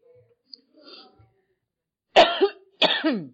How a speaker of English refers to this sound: Now I'm going to start coughing. You guys have something in the air down here that's really getting to me.